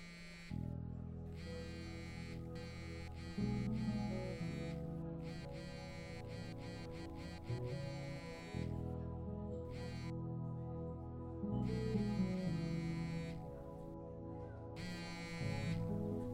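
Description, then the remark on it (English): A phone that had been switched off vibrates again and again with a harsh, low electric buzz as many text messages, missed calls and voicemails come in, the pulses running in long uneven bursts with only brief gaps between them, steady and fairly loud with no one speaking. “Oh, shit, that is a lot of text messages. And missed calls! And voicemails?”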